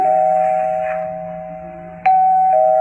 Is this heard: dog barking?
no